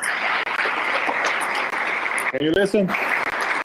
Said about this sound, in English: This is the second round of voting right now, and the last round. They're applauding right now at the floor. I don't know if you can listen.